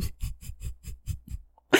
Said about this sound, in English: Oh my God. All the sniffling.